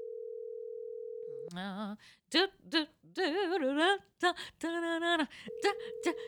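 A steady electronic ringing tone on a phone line, as a call is placed to someone's mother, sounds for about a second and a half, gives way to loud, melodic vocal sounds, then the same tone returns at the end.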